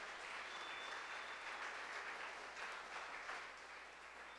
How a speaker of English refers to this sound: Give the Lord a good clap. Dele un fuerte aplauso al Señor.